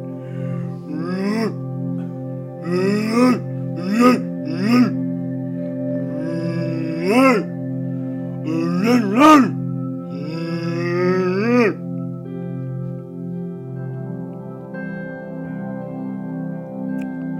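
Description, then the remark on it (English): A hippopotamus gives a series of deep, resonant honking grunts, each rising in pitch, repeated in bursts for several seconds before trailing off into a low, steady rumble. “hippopotamus. You know, that animal from the ocean.”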